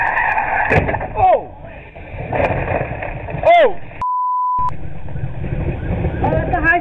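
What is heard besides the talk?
cars skidding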